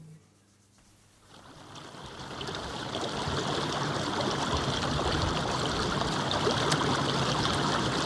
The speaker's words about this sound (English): Fair bit of fast flowing water there, isn't it? Ah, the kind of sound they don't want to hear up in Brechin for a long, long time.